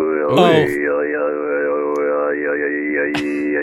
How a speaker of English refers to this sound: The telephone distortion really doesn't help at all. No. And then this guy decided to show off some of his Mongolian throat singing.